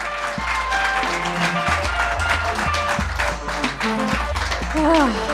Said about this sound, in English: More applause for our guests? Thank you so much.